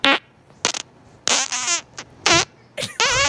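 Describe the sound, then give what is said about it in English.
A recorded fart made of rapid repeated bursts, a string of sputtering blasts with brief gaps between them, fairly loud, with no one talking. “Play the beginning sounded like bam bam bam bam bam bam bam bam.”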